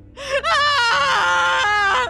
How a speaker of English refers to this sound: Then, slowly, she raised her head. Then the screaming began.